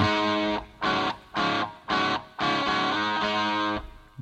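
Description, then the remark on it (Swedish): Loud, distorted rock music with heavy guitar chords struck in short rhythmic stabs, a hi-hat washed in delay and reverb, then a longer sustained chord ringing out. “Den hi-hatten med delay. Reverb.”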